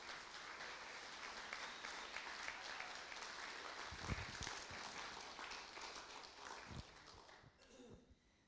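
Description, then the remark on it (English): A church audience at a baptism service applauds a person about to be baptized as she is called up to speak, a dense, steady wash of many hands clapping that holds for about eight seconds before thinning out, with a few heavier thumps mixed in. “Give her a wee round of applause.”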